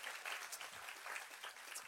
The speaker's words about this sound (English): Can we give all those people a hand clap today? We love you.